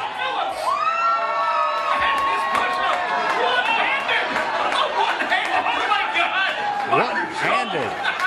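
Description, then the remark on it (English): A lively, delighted crowd cheers and whoops continuously while watching a man do push-ups in a public challenge, with high excited shouts and overlapping voices filling the space at a steady, loud level throughout. “In front of a delighted crowd last night.”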